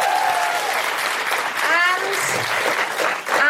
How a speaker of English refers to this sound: Big round of applause for Francesca Moody.